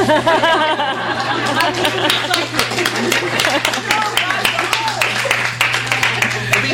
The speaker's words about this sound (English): So instead, let's just clap for them.